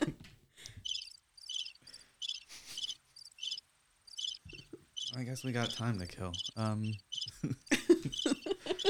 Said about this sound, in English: Forgot how long these crickets last.